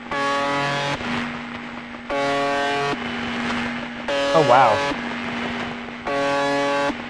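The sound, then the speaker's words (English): A harsh, droning buzz from a radio station sounds in four bursts of about a second each, separated by short gaps, over a steady low hum. A voice briefly exclaims during one burst. “Here is a download of a sample of what plays on that radio station.”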